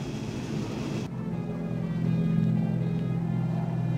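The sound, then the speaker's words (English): A steady, droning roar of two Mitsubishi A6M propeller fighter planes passing overhead, a low throbbing engine hum that swells slightly louder partway through, with no voices. “Two trophy class Mitsubishi A6Ms in original condition, complete with all markings.”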